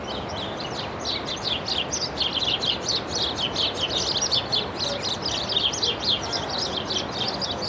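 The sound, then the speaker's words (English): Dense, rapid chirping from several house sparrows fighting close by on a street in California, a continuous agitated chatter of overlapping high calls over a soft outdoor background hum. “Bit of a house sparrow fight going on next to me.”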